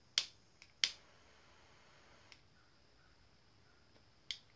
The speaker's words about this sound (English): So I'm gonna spark a stogie because I'm an asshole and not very smart.